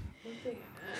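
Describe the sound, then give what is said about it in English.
A short, quick sneeze with a sharp intake of breath before it, fairly quiet, with faint background voice sounds around it. “Bless you. I'm sorry.”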